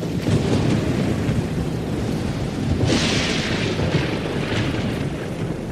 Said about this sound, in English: The first night, they end up in a storm.